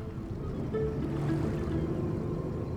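A small launch boat putters along on misty harbour water at dawn, its engine a steady low rumble with faint tonal whine and a wash of water and breeze around it, continuous and unbroken, with no voices.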